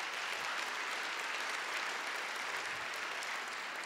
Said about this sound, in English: That's why this church exists. You can clap for that.